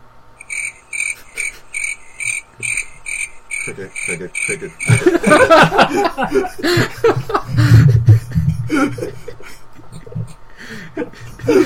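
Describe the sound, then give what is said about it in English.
A voice imitates a cricket with a steady run of rapid, high-pitched chirps for several seconds, then the mimicry gives way to loud laughter and overlapping chatter. “I can't do a good cricket impersonation, but here, I'll have a go at it.”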